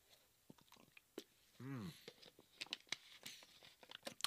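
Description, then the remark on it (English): Someone sips water: quiet wet mouth clicks and smacks, a single throaty gulp partway through, then more soft lip and tongue noises. No one speaks. “Let me get a little bit of this H2O.”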